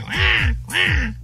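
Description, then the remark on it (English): A baby crying in two short, loud wails as it is taken out of a car seat and put into a stroller, each wail bending up and then down in pitch, with a brief gap between them and no talking. “That was the baby crying getting put into the stroller.”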